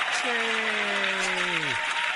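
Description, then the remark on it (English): A steady wash of dense applause fills the whole two seconds, with a sustained low humming tone riding over it before sliding sharply downward and stopping. “By the way, round of applause for that.”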